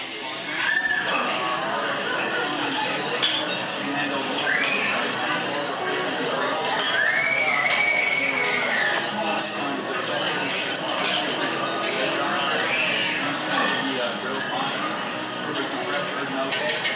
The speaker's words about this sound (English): So the phone, I hear a kid in the background screaming. The phone is picking up the immediate ambient noise from the bar. Right. That scream is picked up on my phone from the opposite side of the restaurant.